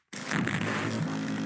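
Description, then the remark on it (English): A short old jingle kicks in abruptly and plays at a steady, fairly loud level, with a buzzy, raspy tone and a held low note toward the end. No one speaks. “That's the old jingle.”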